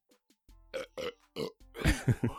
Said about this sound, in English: That belch was that one time when we did bad movie reviews.